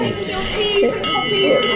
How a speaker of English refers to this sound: Oh dear, we've been called summoned. Back by the bell.